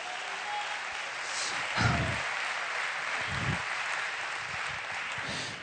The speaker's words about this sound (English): Somebody give the Lord a round of applause today.